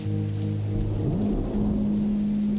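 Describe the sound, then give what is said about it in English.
Steady rain patters and hisses without a break, with water dripping through a flat roof or awning overhead, while a low humming tone runs underneath and slides up in pitch partway through. No one speaks. “just like you're walking under and you're like, okay, I gotta find the right spot where it's not dripping.”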